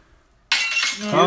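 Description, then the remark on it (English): A sudden, loud glass smash sound effect, played at the press of a button, breaks a short silence, a bright burst of crashing and ringing shards that keeps clattering to the end. “All right, let me find the button. Glass smash.”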